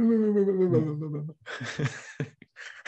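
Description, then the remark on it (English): A stifled yawn: a drawn-out voiced groan sliding down in pitch, then a few breathy, airy exhales trailing off. Fairly loud, with no talking. “Suppressed yawn.”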